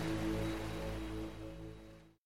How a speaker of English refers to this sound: You're listening to Binaural Beats with Ocean Waves.